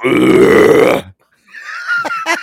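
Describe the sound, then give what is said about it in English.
A loud, drawn-out burp rumbles for about a second, followed by a short pause and then a few shorter, rougher belching or grunting sounds. “What's just belching, belching, belching until I got the pressure off of me.”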